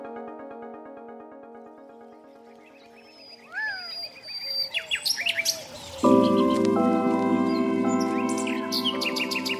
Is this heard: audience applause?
no